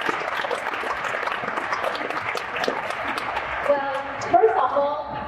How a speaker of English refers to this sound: Please give yourself a big round of applause.